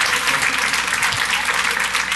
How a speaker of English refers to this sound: All right, big round of applause, ladies and gentlemen. Big round of applause.